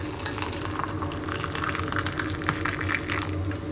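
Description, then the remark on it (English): Hot water poured steadily onto loose leaf frosted fruitcake flavoured rhubarb tisane from T2, a continuous splashing trickle with a faint bubbling undertone that holds at an even level for a few seconds, with no talking. “I'm now going to describe the smell from the tin before the water was poured on it”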